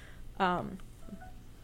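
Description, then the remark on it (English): A smartphone's calendar notifications for the next day go off: a short, bright electronic chime rings out loudly, followed by a couple of fainter, thin beeping tones, with no talking. “That's all of tomorrow's calendar stuff for this podcast, actually. I forgot to put my phone on vibrate, sorry.”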